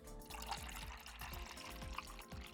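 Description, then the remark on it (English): A shot of Jaeger and blue Gatorade pour into a glass, a steady splashing stream with faint gurgles and glugs running the whole time, with no talking. “Bent did get the Blue Gatorade, right? We'll pour that in quick.”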